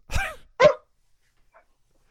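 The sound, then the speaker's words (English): A dog barks a few times in short, sharp bursts: two quick barks close together, a faint yip after a pause, then another bark at the end, with no talking. “They got a dog in the back.”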